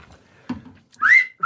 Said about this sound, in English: What's wrong with the wolf whistle? That's a pickup line. Because it's just not creative.